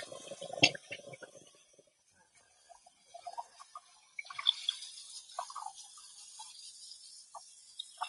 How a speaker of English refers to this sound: I'm washing my dishes and getting them put in the dishwasher so I don't have to do it in the morning.